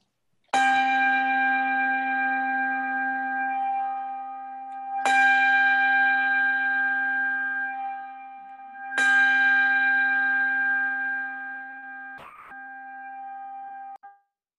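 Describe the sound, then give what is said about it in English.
A church bell is rung three times to begin a worship service, tolling at steady intervals of about four seconds, each deep, resonant strike ringing out and lingering until the next. No voices are heard. “And John Spinks is going to begin our worship the way that he normally does, by ringing the bell three times in significance of the Trinity.”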